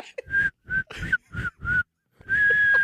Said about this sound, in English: Okay, whistle while you work. Here it is.